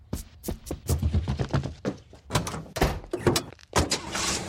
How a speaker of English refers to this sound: Yeah, Sarah's, I just heard Sarah's car peel out.